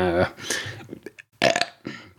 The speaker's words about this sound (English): We're going with a belch. That's where we're going. We're going with a belch. And what better way to clear your lungs out or your stomach? A belch.